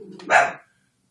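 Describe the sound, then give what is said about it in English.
A single loud, sharp bark from a dog named Radar, following a brief low murmur of a voice, then silence. “The dogs don't either.”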